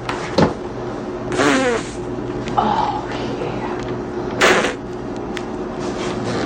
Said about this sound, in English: You know what I like the most? Cake farts.